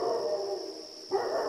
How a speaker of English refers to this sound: It's November, 1974. A dog is howling somewhere in the neighborhood.